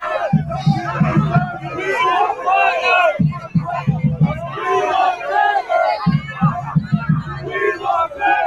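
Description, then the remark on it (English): A soccer fan group yells at the players, chanting "We want better" in loud, overlapping voices, with rhythmic shouted bursts rising and falling over a constant roar of crowd noise. “The fan group's yelling, "We want better."”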